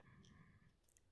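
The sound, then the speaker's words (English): Dice rattle briefly and faintly, with a few light clicks over a low background rumble, the clatter lasting about a second with no one speaking; dice rolled for a sanity check in a Delta Green tabletop game, coming up 88. “Roll sanity for me real quick.”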